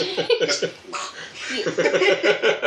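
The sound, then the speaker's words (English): A voice imitates the strange duck-chicken creature call from Avatar The Last Airbender: a fast, steady run of nasal, raspy quacking clucks, fairly loud and sustained without pause, with no spoken words. “and I was just trying to emulate this sound that I heard from Avatar The Last Airbender of this weird duck chicken.”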